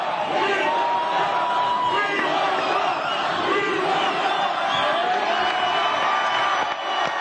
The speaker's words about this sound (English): That's what everybody's saying in the audience. I don't think you hear that back home. Everybody's screaming right now.